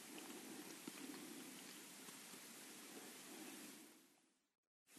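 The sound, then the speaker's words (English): Steady, dense rain hisses without a break for several seconds, then fades to a brief silence before briefly resuming. No voices are heard. “What was it like to practice with rain?”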